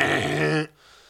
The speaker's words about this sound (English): Just take it easy with the buzzer, dude. That was a hurt buzzer. Kind of rough.